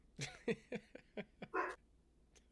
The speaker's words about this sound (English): It's Parker and Fig and Monster. They're riling each other up, and they're barking at nothing outside the window. And all right. Monster and Parker can't see, so they're just barking because Fig's barking.